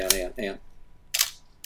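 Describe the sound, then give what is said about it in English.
A film SLR camera's shutter fires with a crisp mechanical clack and a short trailing snap, following a couple of brief voiced sounds from a person at the start. “I hope there's no film in this camera.”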